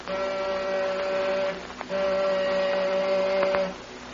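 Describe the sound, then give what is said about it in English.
A door buzzer is pressed twice, giving two long, steady electric buzzes, the first about a second and a half and the second slightly longer, with a short gap between them and no voices. “I'm going to try the buzzer.”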